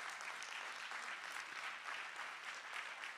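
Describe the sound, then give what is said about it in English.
An audience claps in praise of God steadily throughout, a dense, continuous wash of many hands with no pauses or clear individual beats, holding an even loudness from start to finish. “Now, we're clapping now and praising God”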